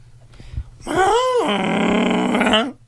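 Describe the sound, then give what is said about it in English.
A person vocally imitates Godzilla's cry, a giant monster's roar: a loud, harmonic bellow that rises and dips, then a long, sustained rasping cry lasting about two seconds before cutting off. “My favorite sound in the world is Godzilla crying, or, you know, his cry.”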